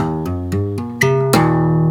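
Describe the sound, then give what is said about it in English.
A short electric guitar intro phrase in a C sharp tuning, played by hammering on at frets 3, 5 and 7: about six quick notes stepping up and down in pitch, each flowing into the next, ending on a louder struck note that rings out. No one speaks. “And all it is, it's just hammering on...”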